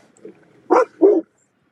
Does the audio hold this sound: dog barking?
yes